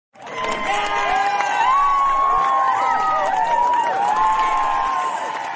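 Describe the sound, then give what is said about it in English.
A crowd cheering loudly and continuously, with overlapping shouts and excited voices forming a dense roar that holds steady for several seconds, scattered clapping mixed in. “You really got the crowd going there.”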